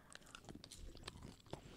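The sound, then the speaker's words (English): Close-up chewing and crunching of a chocolate bar topped with a Ferrero Rocher piece, with sharp crisp bites and wet mouth sounds in an irregular rhythm, right up against the microphone with no talking. “I'm going to chew right in the mic for you.”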